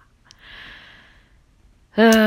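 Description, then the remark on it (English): A person yawns: a long, airy breath drawn in over about a second, then a short pause and a loud, voiced groan to finish. “Hold on, I'm yawning.”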